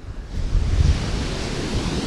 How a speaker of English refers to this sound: Wow. Look at those waves. It is a very impressive and beautiful beach here.